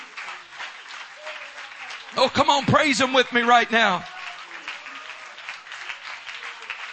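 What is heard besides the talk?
audience clapping hands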